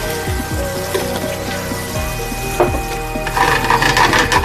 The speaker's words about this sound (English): And get that hot. That's what you want to hear, that little sizzle.